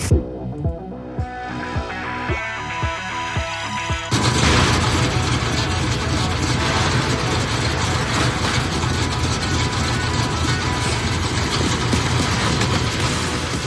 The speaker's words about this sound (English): That is … with that car sound. Send those car sounds in.